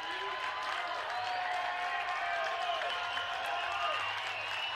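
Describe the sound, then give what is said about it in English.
A large baseball stadium crowd roars and applauds steadily during a game between the Cougars and the Utes, a dense wash of cheering and clapping with occasional whistles rising above it, sustained and loud throughout. “I think it's the loudest we've heard the crowd all night.”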